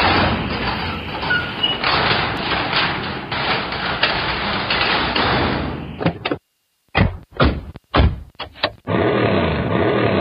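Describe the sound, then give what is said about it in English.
A loud rattling rumble of the doors of the Brick Room Tower Garage being thrown open, ending in a string of heavy clanks and thuds before a steady roar resumes. “Well, let's throw open the doors of the Brick Room Tower Garage, and let's hop in the Wayback Machine.”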